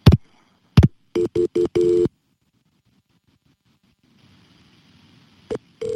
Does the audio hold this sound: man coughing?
no